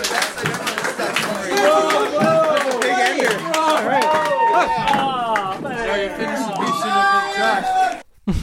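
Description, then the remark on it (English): A crowd cheers and applauds loudly and steadily, high whoops and shouts riding over dense rapid clapping for about eight seconds before cutting off abruptly. “Hot crowd.”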